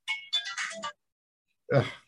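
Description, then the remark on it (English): A mobile phone rings with a quick, bright melodic chime of several short notes, then goes quiet before a brief, rough vocal sound like a grunt or throat clearing. “I got to shut off my phone too.”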